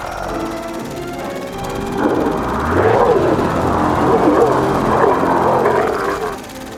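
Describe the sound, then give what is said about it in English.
A deep, rumbling roar of a lake monster in the water rises out of a low growl, swelling after a couple of seconds into a loud, sustained, throaty bellow that wavers in pitch before easing slightly at the end. “the deadliest lake monster of the 21st century. There it is! In the water! Stand back.”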